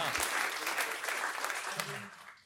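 A short burst of audience applause, dense scattered clapping holding steady at a moderate level before thinning out at the end.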